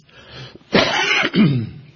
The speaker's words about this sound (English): Don't worry, I just have an ongoing little upper respiratory cough I've had for about 6 months, so it doesn't have anything negative associated with it.